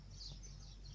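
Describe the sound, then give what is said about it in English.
Birds chirping in trees early in the morning, soft, scattered high calls over a steady low outdoor hum, with no one talking. “It's a bird chirping. Luckily for me, I stay close to trees, and this is what they do early in the morning.”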